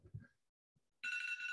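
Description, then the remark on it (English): A phone timer alarm, set to end a 27-minute nap, cuts in abruptly after a brief low murmur and a pause, sounding a loud, steady, bright electronic ringing tone that keeps going to the end. “That was my timer.”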